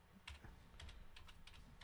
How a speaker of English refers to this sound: That's my typing with one hand.